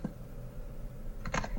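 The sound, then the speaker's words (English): A few quick keyboard clicks from typing, clustered near the end over a low, steady room hum. The keystrokes are soft, with no voices. “Oh, you still typing.”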